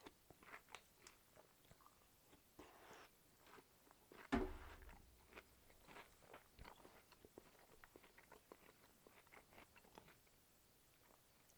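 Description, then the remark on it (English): Crunching of crisp cereal being chewed, a steady run of sharp, irregular crackles with one louder crunch partway through, no talking. “Oh, that is a crunchy, delicious cereal.”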